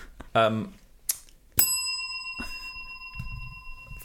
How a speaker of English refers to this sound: Fucking bell! Ting! Ting.